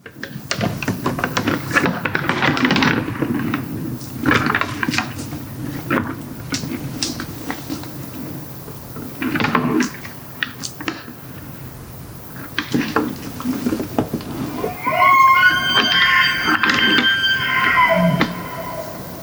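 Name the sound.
elk bugling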